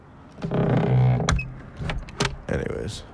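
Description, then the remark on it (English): A back door creaks slowly on its hinges for about a second, then shuts with a few sharp clunks and rattles of the latch, fairly loud. “Left the door wide fucking open.”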